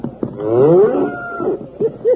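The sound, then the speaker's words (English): A little white-faced calf bawls while being chased by a cutting horse: one long, wavering moo followed by two short, clipped calls near the end, with no voices present. “Look at that little white-faced calf go.”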